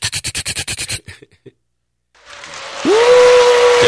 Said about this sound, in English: Can you give her a round of applause, Lee? Oh, no. You got it queued up? Johnny on the spot. Mr. Lee.